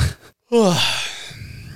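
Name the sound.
a person yawning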